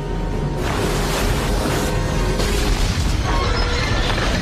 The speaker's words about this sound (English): The sound that it makes when it hits the iceberg. You remember Lewis's little explanation? Like Morse code. Dit, dit, dit. It does not sound like dit, dit, dit, it Lewis. It certainly does not. It's perforating the hull of the ship.